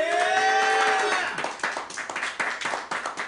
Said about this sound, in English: Should we have the clapter? The clapter and the laughter and the stuff? If now's the point where you clap if you want them to win.